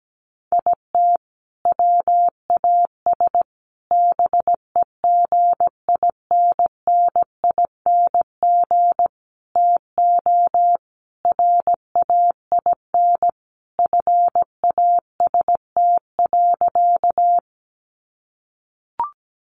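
Morse code sent at 17 words per minute: a single mid-pitched tone keyed on and off in short and long beeps at a steady pace for about seventeen seconds, then a brief click after a pause.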